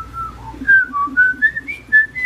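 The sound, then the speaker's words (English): A starling whistles loudly, a quick run of bright, sliding notes that rise and fall in a tuneful, mimicking phrase, with no talking. “Starling. A starling.”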